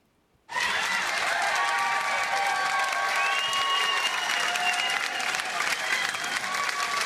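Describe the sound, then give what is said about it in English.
A crowd bursts into loud, sustained applause after a brief silence, reacting to how a man finally cast his vote on a permit, with cheering and whistles rising through the dense clapping for several seconds. “And then finally, I think you can gauge from the reaction of the crowd the way he finally cast his vote.”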